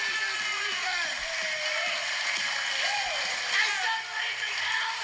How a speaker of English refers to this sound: You hear that shit? You hear the crowd? Do you hear that? Do you fucking hear it? That's for you, Raging Al.